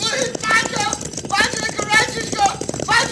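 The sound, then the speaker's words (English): Rapid, steady galloping horse hoofbeats drum loudly throughout, mixed with raised voices in a dense, busy scene, as riders race in front of a stampeding herd of cattle. “Be careful, Pancho. Do not get in front of the herd. Your horse stumbles, you'll be trampled to death.”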